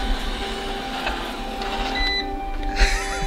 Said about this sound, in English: Sorry, I need to turn off my vacuum.